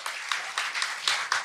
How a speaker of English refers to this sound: They won't sing, but they will clap.